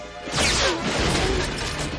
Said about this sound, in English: Taurus Bulba works for no one but himself! And just starts smashing up the lab and being very sarcastic about everything.